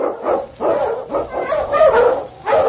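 sled dog barking

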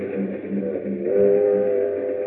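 train sound effect

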